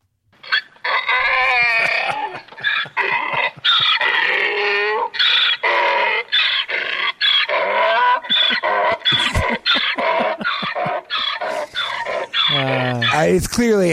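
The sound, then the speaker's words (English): A human voice imitates an agitated donkey, producing loud, strained, continuous braying and honking for several seconds, ending in a sweeping hee-haw. “It's agitated donkey.”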